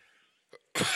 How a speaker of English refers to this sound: Pardon the cough.